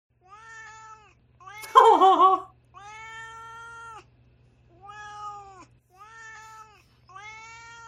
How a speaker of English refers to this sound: And now it's time for Duarte's Corner, where my cat Duarte shares his opinions.